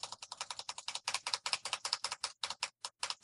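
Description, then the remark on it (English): Rapid, steady tapping of a keyboard space bar, a dense run of sharp, crisp clicks at roughly ten per second, with no voices; someone hitting the space bar as many times as possible in five seconds. “I think I'd be at an advantage because my keyboard has 2 space bars.”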